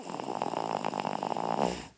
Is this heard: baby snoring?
yes